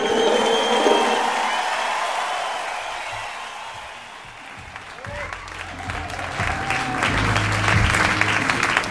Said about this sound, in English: Thank you for the polite applause.